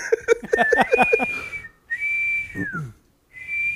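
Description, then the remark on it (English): A person whistles a few long, wavering tones in imitation of an elk bugle, sliding up and holding high with brief pauses between, fairly loud, with some breathy vocal sounds mixed in. “I'm trying to do an elk bugle.”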